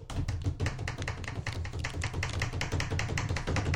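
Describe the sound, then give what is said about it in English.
Rapid, continuous drum roll tapped out on a tabletop, a dense stream of quick, even knocks with a low thudding body, steady and loud throughout with no voices. “I need a drum roll.”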